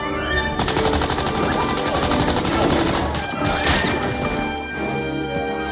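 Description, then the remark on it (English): Rapid bursts of gunfire crackle loudly and continuously, a dense barrage of shots with crashing impacts, in an Indiana Jones film scene where Indy punches a guard, grabs a gun and kills a group of guards; no one speaks. “And as he does that, he just punches a guard, grabs a gun, and kills a whole bunch of guys.”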